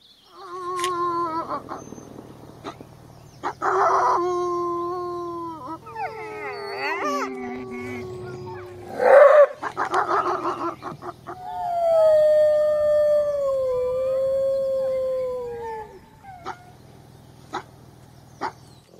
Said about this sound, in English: And now, a word from the wolves of Oakvale.